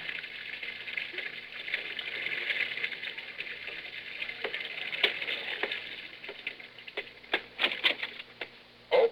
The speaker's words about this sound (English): And now, ladies and gentlemen, let's go out to Jack Benny's home in Beverly Hills. It's morning, and Rochester is running the bath.